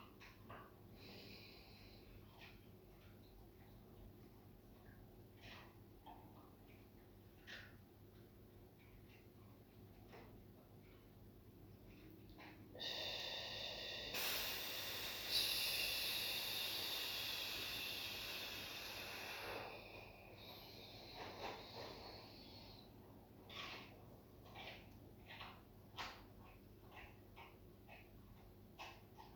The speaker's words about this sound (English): All right. Just start with our breathing. So I like the 1-4-2s. So just do two of those in your own time.